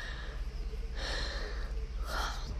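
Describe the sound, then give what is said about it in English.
A quiet yawn: two drawn-out, breathy intakes and exhalations against a low background hum, with no talking. “And then I had to yawn.”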